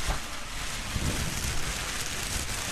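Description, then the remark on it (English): Continuous crinkly rustling of tissue paper inside a red gift bag, a dense, hissy crackle that holds steady at moderate volume for a few seconds with no voices. “Red bag with some nice tissue paper in there.”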